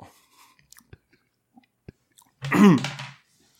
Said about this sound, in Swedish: Jag ska bara tugga upp det här starka maten.